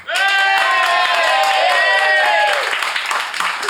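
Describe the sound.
The live audience of the Flatshare Slamdown show bursts into loud applause, voting on who is in the right, mixed with whoops and cheering voices, sustained for a few seconds before tapering off slightly toward the end.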